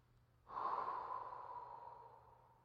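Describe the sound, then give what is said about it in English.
A single long, soft, airy exhale blown into cupped hands begins abruptly and slowly fades over about two seconds, with no talking. “Now breathe into your hands.”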